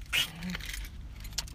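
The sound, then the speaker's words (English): Keys jangle in a quick metallic burst near the start, then a second brief clink about a second later, over a low steady rumble in the background. “Thanks for the nut shot of my key, of your keys. My keys.”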